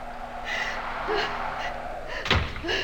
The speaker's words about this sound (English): open the door, please. Oh, of course, Tom.